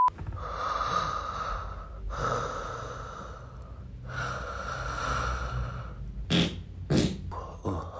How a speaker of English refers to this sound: Warning, if you do not wish to hear me fart in my sleep, then please skip 8 seconds.